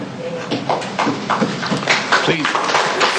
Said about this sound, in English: Please refrain from applauding. It's inappropriate in a court proceeding.